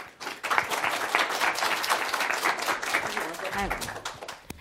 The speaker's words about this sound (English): And so I really want to give a warm round of applause as we welcome Dr.